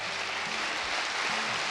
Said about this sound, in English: Do you believe that? Are you clapping because you believe that? Or are you clapping because I shut my iPad?